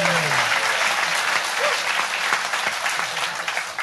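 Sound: round of applause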